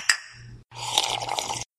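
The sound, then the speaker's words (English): A quick glassy clink, then nearly a second of steady gurgling and bubbling as someone drinks a sour wild ale beer, sounding like a water bong, over a low hum with no talking. “And to our listeners, this is when you hear somebody ripping a water bong, because that's what it sounds like.”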